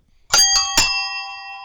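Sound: bell ringing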